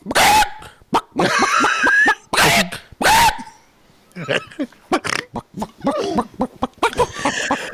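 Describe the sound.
A person's voice imitates a chicken with a string of squawks and clucks, loud, choppy bursts with some strained, rising tones, followed by quicker, softer clucking sounds.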